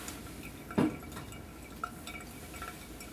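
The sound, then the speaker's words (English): Coffee dripping through a pour-over filter: one distinct drop followed by a couple of fainter, sparse drips against a quiet, low background hiss, with no talking. “So, and you'll see that this drips through, and it'll just be right about the same, you know, kind of 4 to 4.5 minute goal.”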